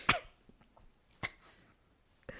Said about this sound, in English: This was a long hit. Or a long cough attack.